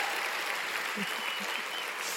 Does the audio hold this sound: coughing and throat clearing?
no